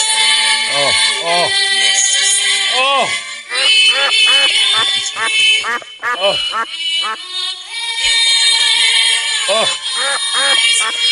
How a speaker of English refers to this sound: Is that just a bad recording, or is that? No, that's just kids singing. It's what that sounds like.